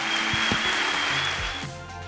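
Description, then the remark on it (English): A church audience gives a clap offering to the Lord after a prayer, a dense, steady wash of applause with sustained musical tones underneath, the clapping thinning out near the end. “Come on, let's give the Lord a big clap offering.”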